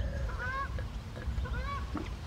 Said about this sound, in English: Notice every time I stop talking, the Canadian geese talk in the background.